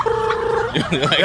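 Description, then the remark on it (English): A person imitates a turkey gobble call, starting with a steady held tone that breaks into a quick, warbling vocal flutter, fairly loud. “You can make a turkey call?”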